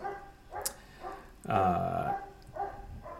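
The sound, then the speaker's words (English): A German Shepherd next door barks: three separate calls, the middle one longer and louder with a drawn-out, slightly howling tone. No one speaks. “That's the German Shepherd next door.”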